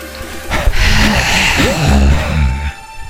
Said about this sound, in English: You know how I like to do. What the fuck was that? I like to heavy breathe.